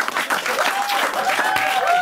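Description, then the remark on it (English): Steady studio applause from an audience on the Today Show after news that the Socceroos are through to the World Cup, a dense patter of many hands clapping at an even loudness throughout, with a few faint whistles or cheers threading through it. “Don't you guys applaud that?”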